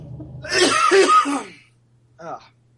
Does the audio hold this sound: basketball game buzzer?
no